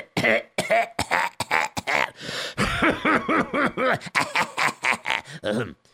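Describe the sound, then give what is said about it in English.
A long, exaggerated bout of throat clearing, loud: a rapid string of rough, voiced hacks and grunts rising and falling in pitch for several seconds, with no talking. “You clear your throat very funny.”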